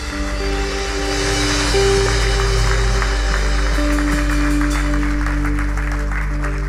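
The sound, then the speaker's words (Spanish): An audience gives loud, sustained applause to the Lord at a church service, a dense wash of clapping that swells around the middle, layered over steady low sustained organ or keyboard tones. “Anímate a darle un aplauso fuerte al Señor.”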